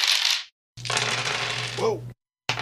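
A handful of dice clatters and rattles across a hard tabletop, fairly loud, in two bursts separated by brief silences, then a third starting as it ends.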